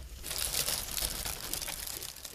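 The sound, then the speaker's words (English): Dry Cap'n Crunch's Crunch Berries cereal pours into a hand in a steady rustling, crunchy patter of small pieces lasting a couple of seconds, with no one talking over it. “Actually, can you pour some more in my hand?”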